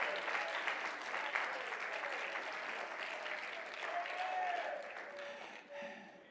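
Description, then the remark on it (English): An audience claps their hands in praise of God at night, a dense, steady wash of applause that holds for several seconds, a few voices calling out faintly beneath it before it begins to thin. “Oh, clap your hands again and praise Him tonight.”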